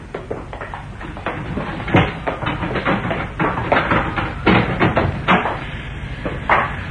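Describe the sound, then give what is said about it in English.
A door is unlocked and opened: a series of metallic clicks and rattles from a latch, with a few sharper knocks spaced irregularly over several seconds, and no voices. “I took the precaution of locking the door just in case the murderer was still lurking in the building.”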